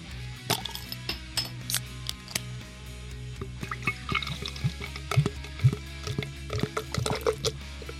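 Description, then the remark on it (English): A beer can cracks open, followed by beer glugging and fizzing into a glass, with scattered clinks and taps over a steady low hum. No one speaks. “Let's crack those beers.”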